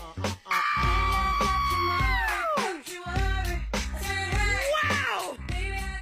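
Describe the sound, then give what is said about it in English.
A person, in a viral clip, reacting to watching Ossoff wink, lets out a long, loud, high-pitched scream that swoops downward, followed by a second shorter falling shriek, all over a steady pulsing music bed. “My thing right now is screaming for comedic effect, and not screaming, like not Mel Gibson screaming, but just sort of like a, like an ah kind of thing.”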